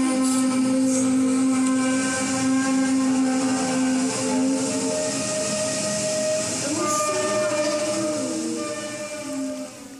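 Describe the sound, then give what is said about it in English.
A mysterious low-frequency hum recorded in Terrace, BC: a steady, droning low hum with strong sustained tones and a harmonic buzz above, holding loud and unbroken for the whole stretch, with faint wavering shifts in pitch and no voices. “As a matter of fact, let's play you a little bit of the hum. This is from Terrace, BC, and people are just sitting on their front porches listening to this.”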